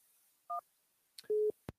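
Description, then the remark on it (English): Phone-line tones after a caller to a radio call-in show hangs up: a short two-pitch electronic beep, a pause, then a longer steady buzzy tone that cuts off with a sharp click. Clear, with no voices. “They hung up again.”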